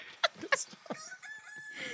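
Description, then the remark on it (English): Several roosters crow at once, their harsh, strained calls overlapping in a ragged chorus, with sharp bursts early on giving way to drawn-out, wavering cries, loud. “My God, these roosters are definitely dying.”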